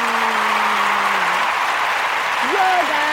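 Steady, dense applause fills about three seconds at a constant loud level, with a few faint sustained vocal tones, like hums or cheers, rising and falling underneath.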